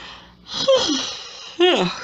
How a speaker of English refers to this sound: Sorry. I am sorry that I keep yawning.